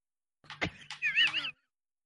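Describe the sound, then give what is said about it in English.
A male pet cat that acts like a dog yowls outside a door: one drawn-out, wavering high-pitched cry lasting about a second, opening with a brief thump and ending abruptly, with no one talking. “I have a cat that thinks it's a dog.”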